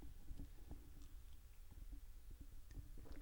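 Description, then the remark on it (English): Quiet mouth sounds of someone sipping coffee from a cup, with soft slurps and swallowing gulps spread across a few seconds and no talking. “Just gonna take a sip of coffee here.”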